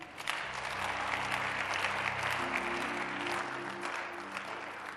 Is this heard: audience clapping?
yes